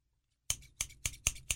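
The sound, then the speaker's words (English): Five quick, crisp scissor snips in a steady rhythm, fairly loud, following a brief silence. “I got scissors right here.”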